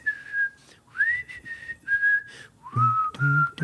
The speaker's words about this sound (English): Very few songs you can pull off a whistle and have it be great and be kind of an amazing part of the song. And I love it every time.